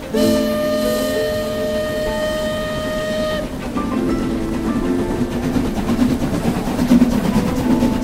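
The horn of the Night Train blares with a sustained, loud tone for a few seconds, then gives way to the steady rumbling clatter of the train rolling along the tracks.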